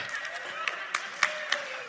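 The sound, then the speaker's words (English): A church audience cheers in a steady, hissing roar as the pastor opens Deuteronomy chapter 34, with thin whistle-like tones drifting through it and four sharp claps landing at an even, regular beat. “So if you have no clue why people are cheering right now, it's because Deuteronomy chapter 34 is the very last chapter in the book of Deuteronomy, which would be the very last chapter in the Pentateuch in the Greek, or the Torah in the Hebrew”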